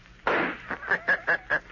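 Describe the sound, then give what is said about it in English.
A single loud gunshot, fired by Rankin at the Shadow inside a cabin, bursts out and trails off, followed by four short, evenly spaced pulses with a high ringing tone. “Rankin, shoot, you fool, shoot.”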